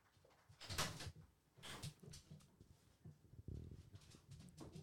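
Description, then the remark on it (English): A door opens with a few scraping, clattering bumps as puppies are let inside, faint shuffling and a soft whimper mixed in, all fairly quiet with no talking. “Oh, we got the other dog now.”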